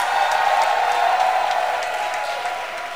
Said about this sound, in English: So I want us with one accord to clap our hands for the singers. Let it be louder tonight, because I'm really preaching for a short time. And as you are clapping, Let's give it up for the film stars.